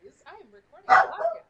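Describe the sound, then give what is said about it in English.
A dog barks sharply, one loud bark after a few softer yips and whines, standing out clearly against a quiet background. “Is Pancake just barking to bark?”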